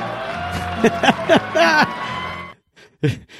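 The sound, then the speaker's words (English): A crowd at a Chicago Cubs event cheers and jeers as Cubs chairman Tom Ricketts is introduced, with loud whoops and drawn-out shouts rising over a steady roar, some of it booing, before the noise cuts off abruptly and one last shout rings out. “First of all, I kind of like the mix of cheering and a little bit of boo.”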